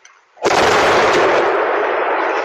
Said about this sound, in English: Regina fire officials now say a compromised natural gas line was the cause of an explosion Sunday morning on the corner of Retallick Street and 6th Avenue. We were talking, and all of a sudden, this huge explosion.